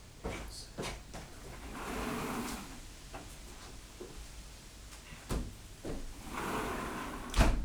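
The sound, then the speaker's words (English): A door is shut: scraping, sliding movement and a few sharp knocks and rattles, finishing with a firmer thump near the end. No one speaks. “Can you shut the door?”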